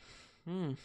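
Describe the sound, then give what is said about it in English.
A short voiced yawn: one fairly loud vocal sound that swells and tapers in pitch for about a third of a second, over a quiet background. “That's a yawn.”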